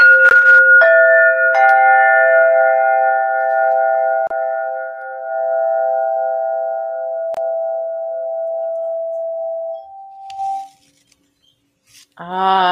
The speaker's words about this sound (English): I will play the crystalline tones to lift us,